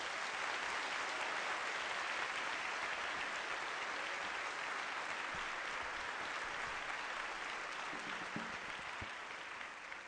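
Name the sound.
audience hand clapping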